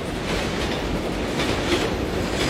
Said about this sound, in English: Did an F train just go by your window?